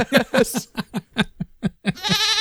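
A goat bleat played from a soundboard, a rapid series of wavering, nasal cries, about eight quick pulses ending in a longer, strained bleat, loud with no talking.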